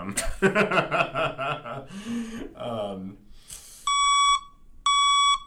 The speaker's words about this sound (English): Is this a truck backing up sound? Dude, you gotta, like, really think about it before you press the button. I thought it was gonna be more of, like, the sound of the actual vehicle moving